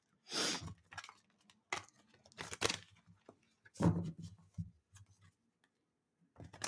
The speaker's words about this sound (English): So I'm shuffling the cards now.